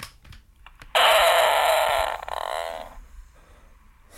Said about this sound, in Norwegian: Så det mutteren. Det lyden av mutteren som fiser. Jeg synes det så flott. Ta den til det. Så det... Dette seriøst? Altså. Ja, det var en julegave fra mutteren et år hun hadde, tatt, hun hadde fise så jævlig Så hadde tatt opp med den rammen her